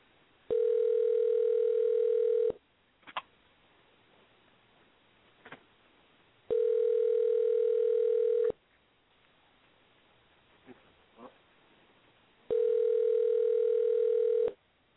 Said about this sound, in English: All right, really let me make this phone call real quick. Out. We got an X Factor on the phone. Let me see see if he picks up.